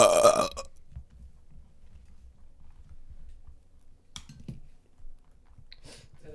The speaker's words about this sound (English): Should I apologize for that? Or some of our fans don't like that. When you burp?